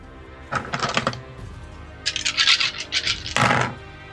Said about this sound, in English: I like AoE. The sound of all those dice rolling is scary. Yeah, I have six d20s on my desk, so I can just roll them twice